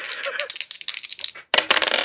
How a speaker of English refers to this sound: Oh, that did not help me. 5 out of 2. If I hadn't rolled two dice, it would have been natural 6.